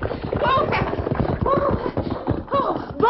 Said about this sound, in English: He turned in the saddle as a buckboard approached hurriedly and stopped.